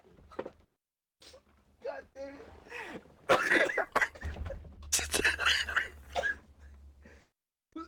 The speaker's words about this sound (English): With all that coughing.